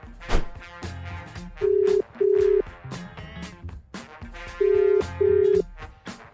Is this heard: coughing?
no